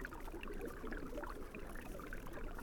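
Steady trickling and gurgling of a creek flowing beneath a thin skin of ice under winter snow, a soft, continuous bubbling with small high-pitched plinks scattered through it, no voices.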